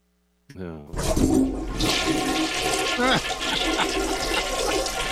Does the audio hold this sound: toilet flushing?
yes